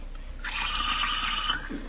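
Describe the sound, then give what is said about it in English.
A hose with no water pressure gives one harsh, airy sputter lasting about a second, a hissing rush with a rough, gurgling edge that cuts off abruptly. No one speaks. “No water pressure. Running harder than that in my pocket.”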